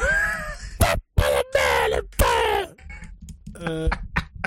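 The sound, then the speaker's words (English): A person lets out a string of exaggerated, ridiculous vocal screeches and squawks, loud, with short gaps between bursts and a warbling, wavering pitch before trailing off into a shaky, stuttering cry. “You gotta come up with your own, like, ridiculous screech to start all your videos.”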